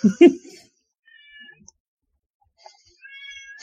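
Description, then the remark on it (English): A cat named Kitty meows twice, high and drawn-out, a shorter cry followed after a pause by a longer one, preceded by a brief muffled thump, as she brings one of her toy mice; no one speaks. “Yes, you're a very good hunter. I'm very proud of you, but you're very loud.”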